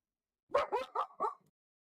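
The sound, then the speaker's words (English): A dog named Luna barks four times in a quick, steady run, each bark short and mid-pitched, then falls silent. No one speaks over the barking. “But and Luna's about to go ape shit.”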